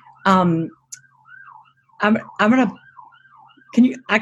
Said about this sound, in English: Because I can hear this siren, the wailing in the background.